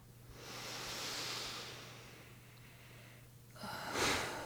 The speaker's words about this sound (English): In fact, let's do it right now. Together, let's all take a deep breath.